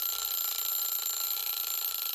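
A game buzzer sounds in one continuous, unbroken blast, a harsh, bright, steady tone held at an even loudness for about two seconds, with no talking over it.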